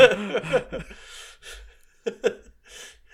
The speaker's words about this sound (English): God, I love Josuke's heavy breathing here. Like, he's like, hold on, hold on, hold on, hold on.